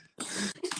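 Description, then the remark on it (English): A single loud sneeze: a sudden sharp burst of breathy noise that trails off quickly, followed by a brief exhale. “Bless you.”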